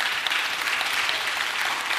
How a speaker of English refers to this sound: The way that Jesus, yeah, come on, that's good. You can clap.